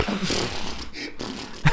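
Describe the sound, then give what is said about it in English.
A voice imitates a horse's snort: a breathy, fluttering blow of air lasting over a second, broken by a short pause and ending in a sharper, louder burst. “And you put your hands in and they're doing the sound the horse makes.”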